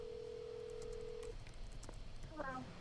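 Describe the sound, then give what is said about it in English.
A phone call being placed to a female fighter for an interview: a steady telephone tone holds for about a second, then stops, followed by faint clicks and a brief voice-like sound at the end. “Should I give her a call”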